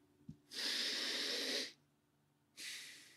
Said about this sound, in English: If you're just doing belly breathing, if you're focusing below the rib cage on all of your breath, you're going like this.